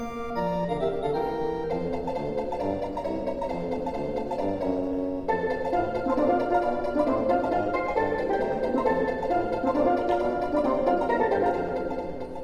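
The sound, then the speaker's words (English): The bright, bouncy Overworld theme music from the video game Super Mario World plays steadily with a catchy melody over a rhythmic bass line and layered synthesized instruments, loud and continuous with no voices. “Let's take a listen to the Overworld from Super Mario World.”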